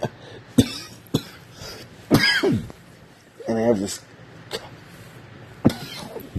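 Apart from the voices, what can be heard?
coughing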